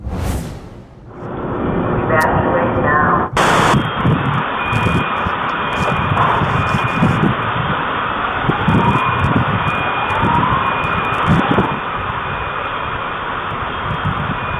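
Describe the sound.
Actual recorded audio of a vehicle bomb explosion in downtown Nashville at 6:30: after a few seconds of background noise, a sudden loud blast breaks in, followed by a sustained, muffled roar with faint wailing tones and indistinct voices.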